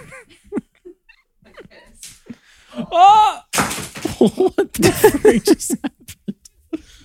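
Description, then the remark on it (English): A sudden clattering knock of an already cracked phone being knocked over onto a hard surface, one sharp hit partway through, surrounded by lively talking and some laughter. “I just knocked over your phone.”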